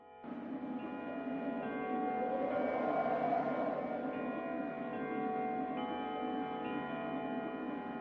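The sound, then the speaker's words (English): The heavy bell of a neighboring church chimes the hour after striking the four quarters, a dense, sustained wash of overlapping tones that swell slightly midway, moderately loud and steady throughout, with no voices. “the chimes of the neighboring church had struck the 4 quarters, so he listened to the hour.”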